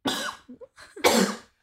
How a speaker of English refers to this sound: And after you're done coughing, you. Whoa, you are. Warm. Oh, that's warm.